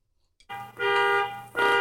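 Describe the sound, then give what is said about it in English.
A car alarm goes off outside, blaring in loud, steady, buzzy honks, one long blast followed by another starting, with a rich harsh tone and no voices over it. “Is it the same car? It is the same car.”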